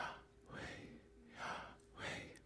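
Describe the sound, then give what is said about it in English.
Slow, deliberate breaths drawn in and pushed out, three airy rushes spaced about a second apart, fairly soft, with no talking in between; breathing as the sound of the name Yahweh, the inhale as 'Yah' and the exhale as 'way'. “The idea being that the name itself, when pronounced, is the sound of breathing.”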